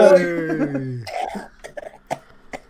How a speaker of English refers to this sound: he has cough death. He's going to try and mute his mic every time, but sometimes obviously one's going to squeak out